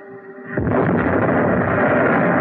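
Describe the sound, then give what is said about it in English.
A torpedo strikes and explodes: a faint humming tone gives way to a sudden, heavy blast that swells into a loud, continuous roaring rumble with crackling texture. No one speaks. “Torpedo three. Running hot, straight, and normal.”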